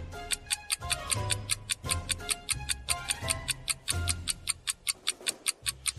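A clock ticks steadily in a fast, even rhythm, each sharp tick bright and crisp, layered over a low pulsing musical bed like a suspenseful countdown timer. No one speaks.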